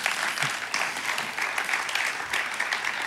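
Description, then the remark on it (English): A room full of people breaks into sustained applause for a clinic built in South Sudan, a dense, steady wash of clapping hands that holds at a fairly even level throughout, with no voices standing out. “You can clap.”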